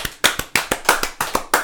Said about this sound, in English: Stop clapping. This is ridiculous.